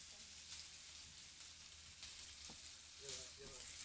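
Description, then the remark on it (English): Steady sizzling of meat frying in a pan in a radio studio while a Nachum Segal Network radio show is recorded, a dense crackling hiss that fills the whole clip, with faint murmurs and a brief clatter of activity in the background. “You hear the sizzle?”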